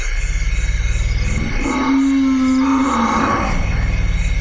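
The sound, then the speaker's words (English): African forest elephants in the Congo grunting and rumbling, some sounds so low they sit at the bottom of human hearing, with a deep, drawn-out low call rising in the middle and fading, set against a steady hum of forest ambience; no voices. “These are African forest elephants.”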